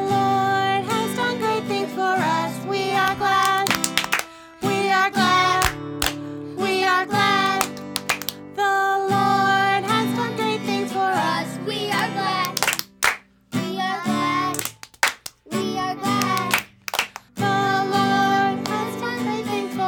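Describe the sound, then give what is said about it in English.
Sharp claps land in pairs at intervals over a loud, bright sung melody with backing music, a group of children singing along and clapping twice each time the words "We are glad" are sung. “Every time we say, "We are glad," you clap twice, okay?”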